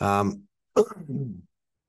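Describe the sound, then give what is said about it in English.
A voiced hum, a brief pause, then a sharp throat clearing: a harsh burst followed by a low, rumbling grunt, all heard alone without talk. “I do apologize for having to clear my throat so much.”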